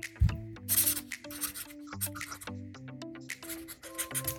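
Handwriting on paper: a pen scratches and scrapes in quick, irregular strokes, moderately loud, over a steady low tonal background.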